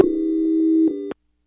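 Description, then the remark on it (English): A steady, buzzy telephone busy tone after a dropped call holds a low pitch for about a second with faint clicks along it, then cuts off abruptly into silence. “Oh, and we lost Greg. So we're going to find out later. Greg's going to call back.”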